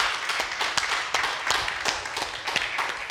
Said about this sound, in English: Let's give them a clap and say thank you for coming to church.